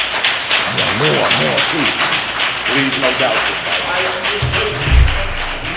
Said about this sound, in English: So without any further delay from me, let me bring on our sister with an incredible round of applause,